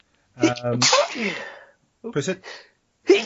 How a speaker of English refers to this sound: Sorry. Bless you.